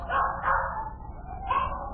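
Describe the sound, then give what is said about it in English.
Several dogs bark and yip in a lively, overlapping chorus in the back seat of a car, with repeated high-pitched yelps rising in bursts over a continuous low rumble, moderately loud. “What's all them dogs doing in my car?”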